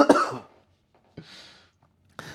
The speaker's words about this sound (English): Sorry, I just coughed in the listener's ear.